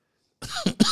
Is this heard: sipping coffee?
no